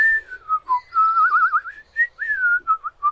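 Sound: human whistling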